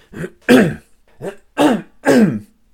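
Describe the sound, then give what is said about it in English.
A series of five loud throat-clearing coughs in an uneven rhythm, each a short harsh burst with brief pauses between, heard alone with no talking. “Excuse me, there'd be obligatory corona cough.”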